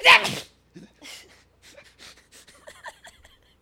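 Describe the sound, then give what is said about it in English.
A single loud, sharp sneeze bursts out right at the start, followed by a few seconds of softer, scattered snuffles and breathy noises, with no talking. “But it's just so funny, the face you make right before you sneeze.”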